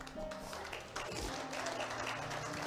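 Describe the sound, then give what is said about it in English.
An audience at a church service claps their hands in praise in steady, dense applause without pause, with a faint low hum beneath it. “Somebody give a hand clap of praise.”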